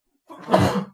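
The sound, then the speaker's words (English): A single sneeze: a brief breathy intake swelling into a loud, noisy, explosive burst that fades after about half a second, with no talking around it. “Bless you.”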